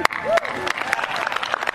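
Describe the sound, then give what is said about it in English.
Light, scattered golf-clap applause from a small crowd, with sparse, polite individual claps spread unevenly over a couple of seconds and faint murmuring voices underneath. “Yeah, golf clap, everybody, because the guy who calls himself president just told you he made a funny joke.”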